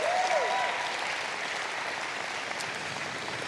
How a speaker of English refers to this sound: Come on, keep clapping. You made that happen.